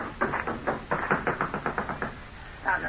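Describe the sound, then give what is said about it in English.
Guards pound on a wooden cabin door in a rapid volley of loud knocks, about a dozen blows in an urgent, uneven rhythm, then a short pause before one last heavy thump. “I had to answer them before their gun butts came crashing against the door.”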